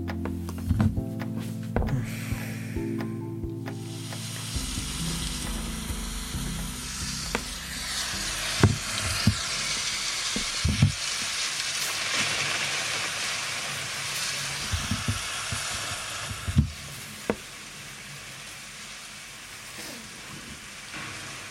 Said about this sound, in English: When I was finally set up, I realised I was going to have to turn to my relaxing rain sounds app, which I'd been using to sleep when coronavirus existential dread was keeping me awake.